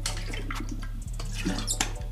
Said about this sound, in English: So, you know, drink some water. You know, I got mine right here in the bottle, you know.